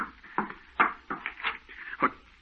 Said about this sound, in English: No one here. You heard the knocking on the door, but you see there's no one here.